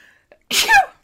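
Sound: sneeze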